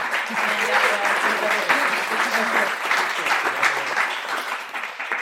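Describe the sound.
A steady round of applause from a crowd, dense clapping that holds at an even loudness for about five seconds, with faint murmuring voices mixed underneath.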